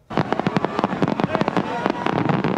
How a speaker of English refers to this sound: Yeah, no major incidents after tens of thousands of revelers filled Jackpool Plaza and the surrounding area to take in those fireworks.